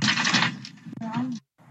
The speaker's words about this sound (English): So you can hear them destroying that passenger window in the video. What appears to be a hammer is what they used. Can confirm it appears to be a hammer, but anyway.